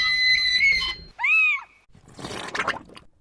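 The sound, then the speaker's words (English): A caged talking parrot called Mr. Squawky Pants squawks: a long, harsh, high-pitched call, then a shorter squawk that rises and falls, followed by a scratchy, noisy burst of lower-level chatter. “John Butley got a parrot.”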